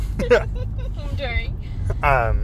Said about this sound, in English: Yeah, and we actually do a lot of recording in my car. Exactly, so this time it's moving. This is the first time it's been moving.